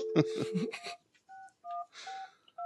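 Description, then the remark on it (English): A phone number being dialed: a brief noisy burst, then about four short, steady touch-tone beeps at slightly different pitches, spaced evenly and fairly loud. “Call him back.”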